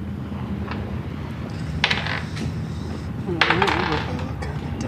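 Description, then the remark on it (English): Dice clatter and tumble across a hard tabletop in two short bursts, one brief and a second longer rattle, as players roll initiative in a tabletop role-playing game, with faint voices murmuring in the background. “I would like you all to roll initiative, please.”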